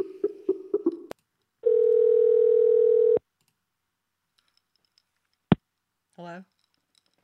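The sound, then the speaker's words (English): After a few short bursts of sound, a steady, loud telephone dial tone from a dropped call drones for about a second and a half and then cuts off, followed by a sharp click and a brief voice. “Who drops a call?”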